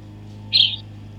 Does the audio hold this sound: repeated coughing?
no